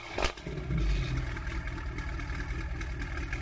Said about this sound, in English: That sounds like valves closed. That's valves closed. You can see only the one exhaust spitting out. Such a high revving. Look at it, like shaking the camera a little bit. Weird.